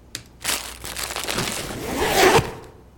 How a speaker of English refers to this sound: Unwrap a bag of microwavable sweet popcorn. You have one. Put in the microwave for a delicious snack.